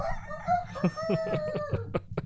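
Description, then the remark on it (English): A rooster crows loudly, a single stretched cock-a-doodle-doo with a strained, wavering pitch, played alone as a sound effect on a Saturday morning radio broadcast without any talk over it. “Somebody cue the rooster sound now.”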